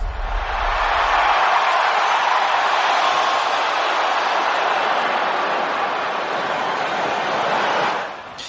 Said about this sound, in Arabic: دخلنا لك صوت الجمهور عشان تعيش أجواء الملاعب وفي نفس الوقت تحس إنه الأمور داخلة يعني في في في جماهيرية.